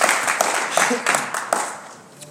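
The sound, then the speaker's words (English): A seated church audience claps in praise of the Lord, a dense patter of many hands with sharp bursts standing out, steady before tapering off near the end. “Give the Lord a hand clap of praise as you're seated.”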